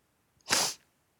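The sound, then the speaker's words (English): A single quick, hissing sniffle through the nose from someone recovering after crying, a breathy burst lasting about a third of a second, with no talking around it. “Sorry, I'm sniffling.”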